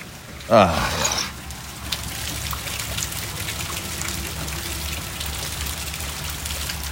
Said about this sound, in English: Raining buckets, as they say. I believe they say that. I think. Wall of rain. I just heard somebody on the news saying it's a wall of rain.